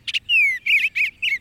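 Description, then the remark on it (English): Tree swallows call in a quick series of clear, liquid chirps and one gliding whistled note, bright, with no voices and only a faint low background hum. “It's a wistful moment when your backyard swallows or bluebirds depart each fall, like the tree swallows we're hearing now.”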